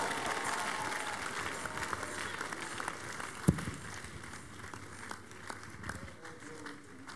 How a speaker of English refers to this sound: Give the Lord a big clap of praise. We made it. You made it to the month of July. Come on, give him the biggest clap of praise.